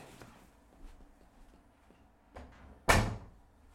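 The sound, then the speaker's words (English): A door swings shut with a single firm thud near the end, its sound ringing briefly after faint shuffling movement, in a bedroom. “hang on, the door.”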